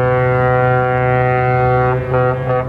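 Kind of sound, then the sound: signal or alarm, foghorn blast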